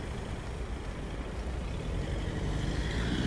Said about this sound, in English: Uh-oh, this car is doing a dangerous maneuver for some reason. What is he doing? Why doesn't he continue?